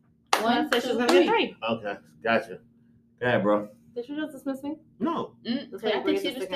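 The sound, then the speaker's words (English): Three sharp hand claps come in a short burst mixed in with ongoing talk, the smacks crisp and fairly loud against the voices. “I guess because she has three claps.”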